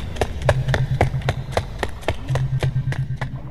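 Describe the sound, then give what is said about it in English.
Several men running out of a burning ship, their footsteps pounding in a quick, regular rhythm of sharp thuds over a low rumbling background, with no talking. “The men run out of the ship.”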